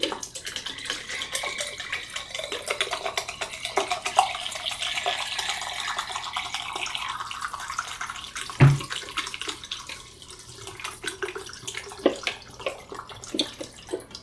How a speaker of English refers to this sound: And my I am going to pour in my fixer. Okay, and yes, let's start the timer at 5 minutes. And pour in the fixer.